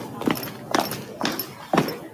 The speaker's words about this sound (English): Hang on, let me turn my feet down a little bit more because people might not be able to hear us talking over our footsteps. There we go. I'm tiptoeing a bit now.